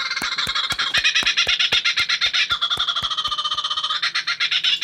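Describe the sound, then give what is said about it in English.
A kookaburra's call: loud, raucous cackling laughter made of rapid, evenly repeated harsh notes that run unbroken for about five seconds, with no voices. “As the clock strikes the minute on the hour, you hear the Kookaburra clown call.”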